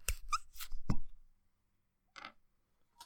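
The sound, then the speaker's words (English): A single hollow cork pop as a scotch bottle is opened, preceded by brief handling and rustling noises, then a short squeaky scrape a moment later. No one speaks. “Yours had a nicer pop than mine did.”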